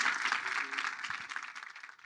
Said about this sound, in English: Thank you so much for joining us, guys. A warm round of applause for Pierre.